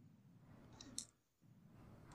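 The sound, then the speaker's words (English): Quiet handling of small dice during a tabletop role-playing game: a sharp click near the middle, a softer rattle before it and another click at the end, over faint background hum. “Put that dice away, thinking I'll never have to use it again.”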